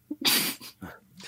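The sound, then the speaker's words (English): A person sneezes once, a real sneeze, loud, with a quick sharp inhale just before the explosive burst and a few softer breathy sounds trailing after. “The initial is my actual sneeze.”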